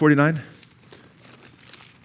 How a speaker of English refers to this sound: I hear pages turning.